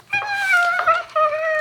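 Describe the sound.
A six-year-old boy gives two high, drawn-out meows, pretending to be a cat: a long, wavering call followed by a shorter one, fairly loud with no other talking.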